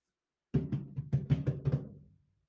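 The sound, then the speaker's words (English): A quick run of about eight hollow, thudding knocks on a door in an uneven rhythm, fairly loud with a low boomy body, then a short ringing fade into silence. No one speaks. “Hold on, someone's at my door.”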